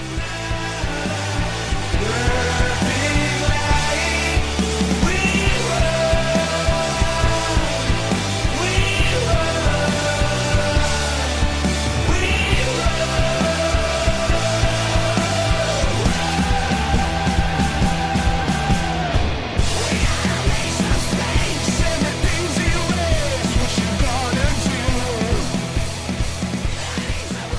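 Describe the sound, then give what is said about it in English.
A loud, dense rock song plays continuously with heavy guitars and driving drums, a raw, screamed vocal pushing through the mix, and a brief break near the end before the band crashes back in. “There you go, it's a … song. At least he screams a bit.”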